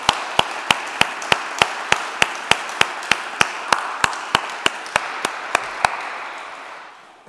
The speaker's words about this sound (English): They're an amazing bunch of people. I've had quite a lot to do with them over the last few years with Interregnum and now. But can we give them a round of applause just to say thank you for all they're doing?